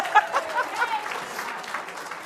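An audience claps steadily for a participant after a guessing game, a dense patter of many hands for a couple of seconds, with a few short high vocal cheers rising over it at the start.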